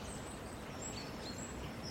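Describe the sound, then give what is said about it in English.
Faint, high twittering of goldfinches chattering, several thin, quick calls strung across a steady background of outdoor noise, with no one speaking. “There's some chattering goldfinches coming.”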